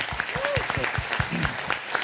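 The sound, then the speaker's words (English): An audience at the Aquarium of the Pacific claps steadily in a dense, crackling burst of applause, with a couple of brief vocal calls or murmurs rising over the clapping. “That's worth some applause.”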